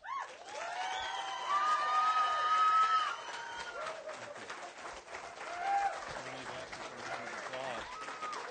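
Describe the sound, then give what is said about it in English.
An audience applauds steadily for several seconds for the candidates and the panel of questioners at a City Hall election candidates' debate, a dense wash of clapping that swells midway, with a few cheers and whoops rising above it. “And let's have another round of applause for the candidates and for our panel of questioners.”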